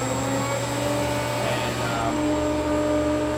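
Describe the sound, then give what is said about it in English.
A screw vacuum pump made by Atlas Copco runs steadily, a dense mechanical hum with sustained tonal whine and a low throbbing drone, constant in loudness throughout with no pauses. “This is called a screw pump from Atlas Copco.”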